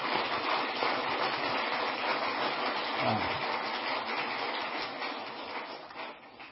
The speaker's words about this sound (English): So I would ask you to join me in a brief round of applause for them.